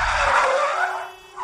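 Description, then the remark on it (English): A loud, sustained screech of skidding tires as a car swerves, a harsh high squeal that wavers in pitch for over a second, with a low engine rumble underneath and no voices. “Tiger swerves.”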